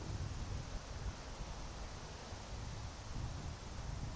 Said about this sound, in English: Wow, it's really windy. That's good, though.